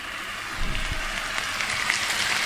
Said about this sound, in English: I'll never tire of hearing that sizzle on your pan, no matter what dish you're doing.